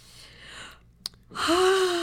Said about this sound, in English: See, that's a reasonable yawn. That's a reasonable yawn.